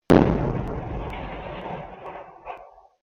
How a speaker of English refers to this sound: It felt like a bomb exploded. A backyard security cam from a nearby apartment captured the sound of the blast.